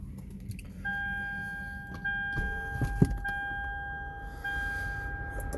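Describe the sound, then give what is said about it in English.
A car window rolls up with a steady electric motor whine lasting several seconds, over a low rumble inside the car and a few faint clicks and knocks. “Fuck it, let me roll my window.”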